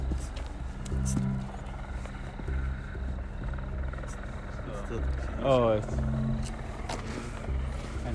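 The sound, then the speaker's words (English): A steady, low droning hum from live music at a venue down the street, along with a helicopter, runs throughout, with a brief rising-and-falling tonal wail about halfway through and faint background murmur underneath. “It sounds like they're doing like live music just outside their spot.”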